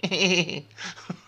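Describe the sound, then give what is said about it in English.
A single sheep bleat, wavering and nasal, rings out loud for about half a second, followed by a few softer rustling sounds. No one speaks. “What do wolves think when they see a bunch of sheep bleating around?”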